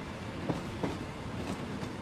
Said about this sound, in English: Do you know what that is? I know you know it's a train. Do you know what train? Well, it's a train that Ray just got on